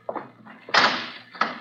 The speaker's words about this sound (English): if you'll please stand away from the vault, Miss Bowen. I should like to close the door